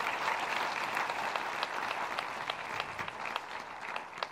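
An audience applauds steadily, a dense wash of many overlapping claps with sharper individual claps popping out, holding an even, fairly loud level throughout with no voices.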